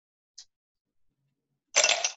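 A couple of ice cubes clink into a smoked glass for a drink: one small faint tick, a quiet pause, then a loud, bright rattling burst of clinks lasting under half a second. No one speaks.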